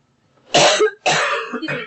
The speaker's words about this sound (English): Coughing in stereo.